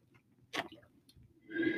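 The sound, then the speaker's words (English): A sip from a water bottle: a sharp wet click, a brief pause, then a louder sustained swallowing gulp toward the end, with no talking. “Yeah, I have a water bottle. Yeah. That was my sip of silence.”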